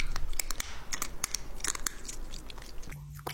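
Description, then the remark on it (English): Crisp crunching as a cat chews dry treats, a rapid irregular series of sharp crackly bites with no voices, ending in a brief low hum. “It like crunches them.”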